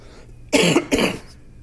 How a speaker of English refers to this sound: Cough it all up. Yeah. He took some expectorants.